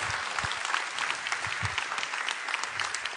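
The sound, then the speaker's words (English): An audience claps together in a dense, steady burst of applause, many hands overlapping into a continuous crackling wash with a few low thumps, holding at an even loudness throughout. “We should clap for that.”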